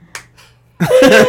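A single loud, explosive sneeze bursts out after a couple of faint breathy intakes, sharp and forceful with a voiced edge, lasting about half a second.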